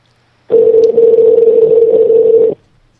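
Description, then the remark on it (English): A single steady ringback tone on a phone line as a caller is put through, one continuous buzzing burst lasting about two seconds, loud, with no voices around it. “The phone's ringing.”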